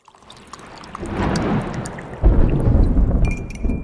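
A stormy rumble with a rushing, rain-like wash swells in after a quiet start and surges louder midway, while small ceramic clinks like a teacup and spoon tick through it.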